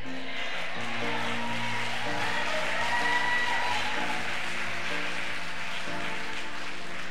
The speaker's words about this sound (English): And all the people around you right now that are shouting amen, they're not doing so because this word excites them. They're doing so because this word is fanning a fire in their hearts that was ignited on the day that they opened their lives to